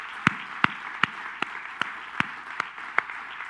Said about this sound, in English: Now what I want to do is clap for all of our ladies who are volunteering and serving in this church. Come on.